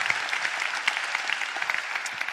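Steady audience applause, a dense wash of many hands clapping at an even, moderately loud level with no pauses, lasting the whole couple of seconds.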